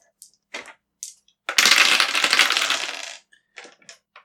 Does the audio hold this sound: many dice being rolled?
yes